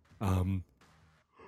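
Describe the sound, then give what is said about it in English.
A loud voiced yawn rising out of a breath, lasting about half a second, then trailing off into a softer breathy exhale. “I shouldn't be yawning this much.”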